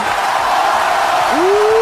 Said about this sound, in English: Let's do a cheer.